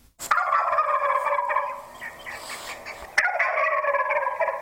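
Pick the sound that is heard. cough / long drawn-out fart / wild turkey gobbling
wild turkey gobbling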